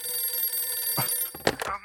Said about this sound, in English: So you go in and change your clothes and everything goes normally until the phone starts to ring.